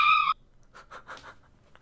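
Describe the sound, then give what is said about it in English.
A pet dog barking during a conversation yelps in a sharp, high-pitched burst, followed by a quick run of four fainter, shorter barks or yips, with no talking over them. “Well, while your dog's barking, I guess I'll continue with the summary.”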